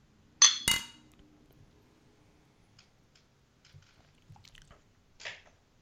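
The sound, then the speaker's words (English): Two bright glass clinks ring out close together in a toast with Two Roads Brewing Company seasonal pumpkin beer, followed by quiet sips, small clicks and faint handling sounds. No one speaks. “To that, I cheers you.”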